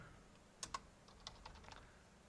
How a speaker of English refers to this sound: You're just typing the word factory, like stock.